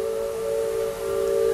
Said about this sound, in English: And see, like, that the simple sound, like, we've done, like, top 10 sounds of Walt Disney World. Like, that's one of my favorites, that sound of the bell and the steam whistle off in the distance.